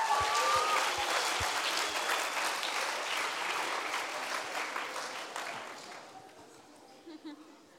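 An audience applauds with dense, steady clapping that stays loud for several seconds before thinning out and fading toward the end, with a few low thumps at the start.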